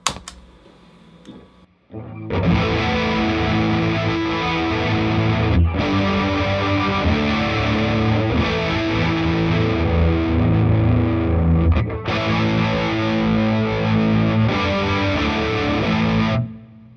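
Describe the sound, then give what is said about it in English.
Loud, distorted electric guitar played through a chorus pedal, giving a swirling chorus effect, plays sustained chords for about fourteen seconds, with two brief breaks between phrases, after a short quiet lead-in. “So with the chorus on.”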